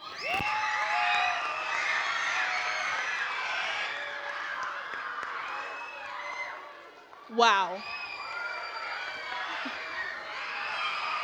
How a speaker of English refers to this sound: Oh, wow. Oh, wow. The paparazzi are cheering. They're calling her name.